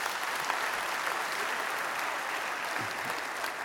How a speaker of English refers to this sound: But with all of these special young people, it's so good to have you with us this morning. Won't you give them a round of applause?